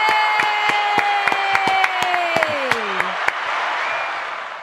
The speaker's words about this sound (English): Oh, I love that soundtrack. That applause. That's wonderful.